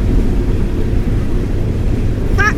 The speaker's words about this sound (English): It sounds like wind going through a tunnel. Only in my right ear.